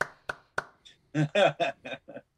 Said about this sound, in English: Round of applause, yep. Everybody.